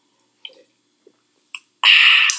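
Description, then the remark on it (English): Three small, soft wet lip clicks, then a sudden loud, airy slurp as a light roast coffee from Ethiopia is sipped at a coffee tasting, holding steady for about half a second. No one speaks. “So we'll take a sip, inaugural sip.”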